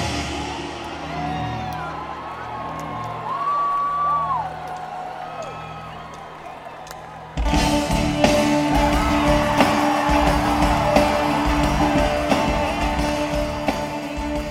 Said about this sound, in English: it sounds like a car garage. Like, what are all these noises? And then Carter just hits the gong.